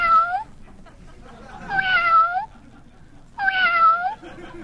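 A cat meows three times in a row, each call a drawn-out, wavering cry with short pauses between, loud against a faint background hum.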